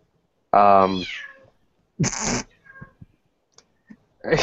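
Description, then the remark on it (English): A cat lets out a loud, drawn-out meow, then a harsher, raspy cry a second later, followed by a few faint clicks and rustles. “Stop killing the cat, man.”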